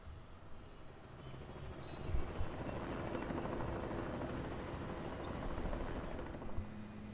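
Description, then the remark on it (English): A helicopter drones steadily overhead, its low rotor thrum continuous and fairly loud throughout, with no voices present. “Taylor Fritz is riding in on a helicopter, maybe?”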